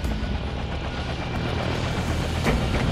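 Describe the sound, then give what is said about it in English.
A desert-camouflage helicopter, its engine roaring steadily and rotor blades thumping in a low, continuous drone, sets down lightly in the center of a helipad where other helicopters are tied down, with no voices. “We set down light in the center of the helipad. Several other desert camo helicopters were tied down around us.”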